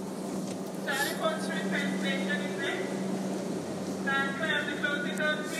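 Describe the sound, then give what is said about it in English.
Steady low rumble of a subway train standing at a station platform, a constant mechanical hum underneath, with people talking over it. “Okay, we're going to get back on the train we just got off of.”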